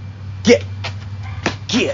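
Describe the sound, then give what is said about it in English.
A dog named Chi whimpers during rifle shooting practice in a few short, high, wavering whines, with brief thumps between them over a steady low hum. “You're not going to shoot the dog.”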